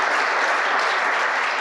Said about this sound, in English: Thanks, everybody, so much. Big round of applause for our panel here.